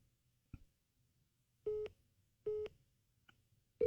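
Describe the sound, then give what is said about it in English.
A telephone busy signal heard when calling someone who is already on the phone: short, steady electronic tone bursts repeating at an even pace, with a couple of faint clicks between them and no voices. “Yeah, it's telling me that I can't talk to Dave.”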